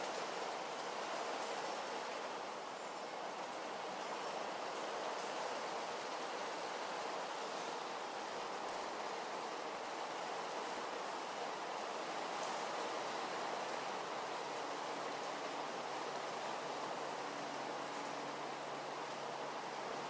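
Storm sounds in the background: a steady, dense rush of rain-like noise that holds constant for the whole stretch, with no distinct peaks and no one speaking.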